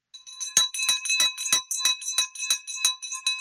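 A bright, ringing bell is struck rapidly about ten times in a steady rhythm, each clang overlapping the lingering metallic tone of the last, loud and close with no talking.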